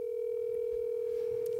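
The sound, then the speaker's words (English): A steady, unbroken phone tone hums at a single mid-low pitch for the whole moment, fairly loud, with no voices over it, as a phone call is placed and rings through on the line. “I wonder if I can call him.”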